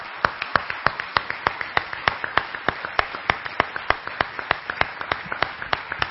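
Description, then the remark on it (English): Sharp, evenly spaced claps sound in a steady rhythm, about four per second, like a group clapping together in time, giving a round of applause to the Lord during a Spanish-English prayer. They stay moderately loud throughout, with no talking over them. “Let's give a round of applause to the Lord.”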